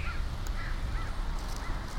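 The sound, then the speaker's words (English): Crows caw several times in a loose, repeated series over a steady low rumble of wind or background noise, as they circle the area in the middle of the day. No one speaks. “The crows alone often circle the area during the middle of the day.”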